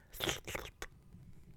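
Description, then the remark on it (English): Two wet, airy slurps made into the microphone to imitate eating soup, with no actual soup, followed by a brief sharp burst, with a low background rumble continuing afterward and no speech. “I don't know if slurping into the microphone is going to really help him.”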